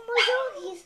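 dog barking and whimpering

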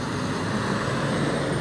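passing road traffic

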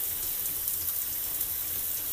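shower water running

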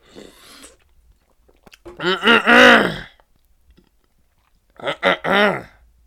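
drinking water

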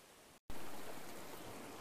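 flowing river water

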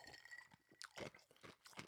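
crunching ice cubes

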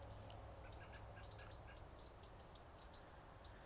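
birds chirping

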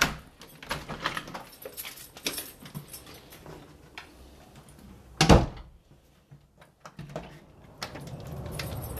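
back door opening

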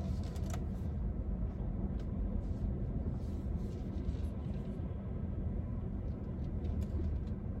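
passing road traffic

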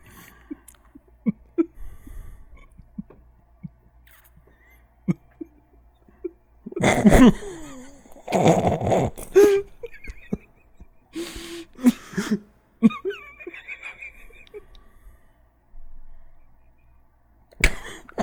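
heavy breathing

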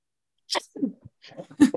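sneeze

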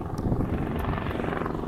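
police helicopter flying overhead

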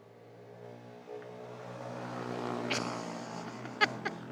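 motorcycles passing by

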